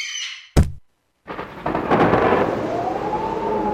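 thunderstorm sound effect

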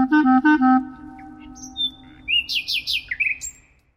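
nightingale singing

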